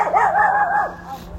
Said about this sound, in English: And yet I'm just passing a noisy dog.